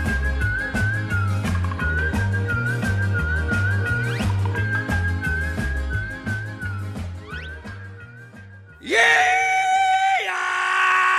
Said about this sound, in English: Let me startle you. I'm just doing the rebel yell here to kind of kick things off.